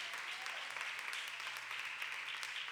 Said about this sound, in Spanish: Y el que lo crea, denle un fuerte aplauso a mi Rey con el corazón.